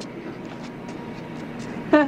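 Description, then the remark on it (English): A train approaches and passes, rumbling steadily with a broad, continuous roar, and a short, bright horn-like blast sounds right at the end. “Then when the train comes, we make out like crazy.”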